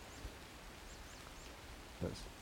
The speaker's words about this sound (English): I think that's a marsh tit. Nice one.